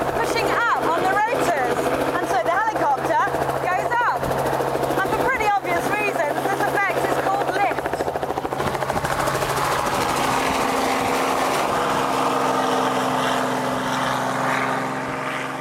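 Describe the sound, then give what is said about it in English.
A 2.5-ton helicopter's rotors roar loudly and steadily as it lifts off the ground and accelerates into forward flight, a dense, whirring engine drone throughout, with a voice speaking over it during the first half. “As far as we're concerned, lift is what we produce to get 2.5 tons of helicopter up off the ground and accelerated into forward flight.”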